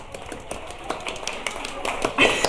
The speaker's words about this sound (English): We're just gonna give you a round of applause, Shirley.